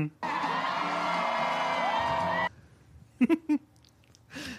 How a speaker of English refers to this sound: The soundboard is magical. That one? That was a crowd cheering.